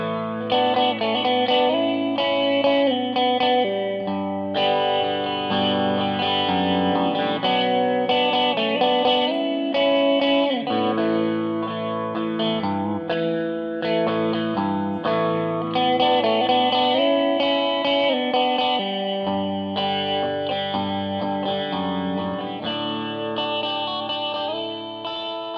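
A jangly electric guitar rings out through effects, bright strummed chords with a shimmering chorus-like wobble and light echo, playing steadily and fairly loud for the whole stretch with no voices.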